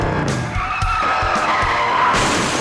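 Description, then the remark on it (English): A loud motorcycle skid in a motorcycle accident, tires screeching in a long sustained squeal with harsh scraping bursts as the bike slides into a crash. No one speaks. “A motorcycle accident changed everything.”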